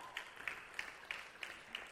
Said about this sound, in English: Since we've come here, we've had, over the course of the last three Sundays, 24 people raise their hands saying, I want to receive Jesus into my life. Isn't that exciting? Yeah, you can give it a clap.